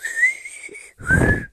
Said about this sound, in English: I like the whistling in it.